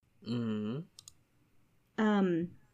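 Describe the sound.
A quick, quiet double click from a computer mouse clicking on a website, set between two short voiced hums from someone.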